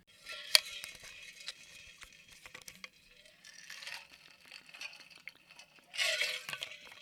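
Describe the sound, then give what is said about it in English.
A glass clinks sharply, followed by soft handling noises and quiet sips and swallows of water, fairly faint, with a brief louder rustle near the end and no talking. “Quick water break.”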